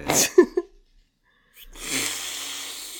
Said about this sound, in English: You've got a powerful sniff. In the ladies' room. You've got very manly nostrils.